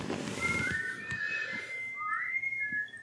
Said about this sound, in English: Surprisingly, whistling for the wind has done nothing. Absolutely nothing.